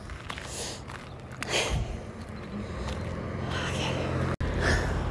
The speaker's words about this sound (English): Sorry, I'm going up a hill. We're in Julian right now. And I should say I'm like in Kilimanjaro or something with the way that I'm breathing.